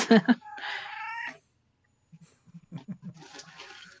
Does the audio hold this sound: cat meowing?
yes